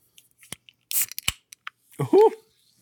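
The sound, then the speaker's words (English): A can of fizzy mixer for vodka cracks open with a few sharp clicks and a brief fizzy hiss, followed by a short snap. A voice then lets out a quick rising exclamation. “It's still a can, though. It cracks.”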